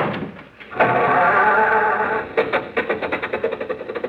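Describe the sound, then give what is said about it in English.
An old car engine grinds and wheezes as the car is started, then sputters into a rapid, uneven chugging rhythm of repeated bursts. It is loud, with a thin, old-radio tone and no talking. “Now, look, stop with the jokes and start the car, will you?”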